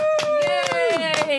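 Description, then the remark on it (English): A handful of hosts clap for themselves in quick, uneven bursts on finishing an album, while a sustained voiced cheer or hummed note rings over the claps and slides lower toward the end. “Luckily, what this means is that we are done with the album, which is fucking, honestly, let's give ourselves the crescendo we've been aching for this entire time and clap for ourselves, please.”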